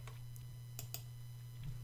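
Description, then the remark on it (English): Typing on a keyboard: a handful of soft, irregular keystroke clicks, a couple close together, over a low steady electrical hum, with no one speaking. “a single mother working as a secretary in the Dallas headquarters of the Texas Bank, which meant spending much of her time typing, or to be more precise, correcting the mistakes she's made by retyping.”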